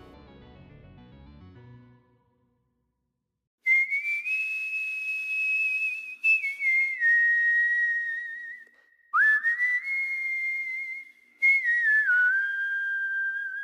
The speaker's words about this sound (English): So now let's get spooky and let the whistling begin.